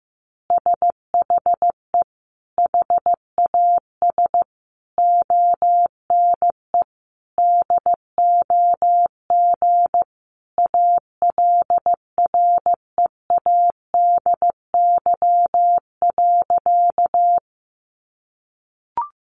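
Morse code practice of easy phrases sent at about 15 words per minute: a single steady mid-pitched tone keyed into short dots and longer dashes, running unbroken for around seventeen seconds with no voices, then a faint blip.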